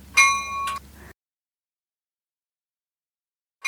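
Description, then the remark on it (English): Bell chimes counting down five bells: two bright, ringing chimes strike in quick succession and decay abruptly, followed by a long silence before another chime begins at the very end. No voices are heard. “Let me give you a count of five bells.”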